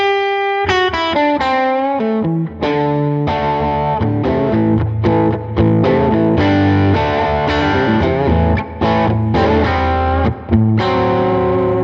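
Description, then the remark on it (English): Overdriven electric guitar plays a loud, continuous run of chords and single notes through a compressor into a Euphoria distortion pedal, with a crunchy, sustained tone and brief pauses between phrases, alone. “So it goes from the compressor into this distortion pedals.”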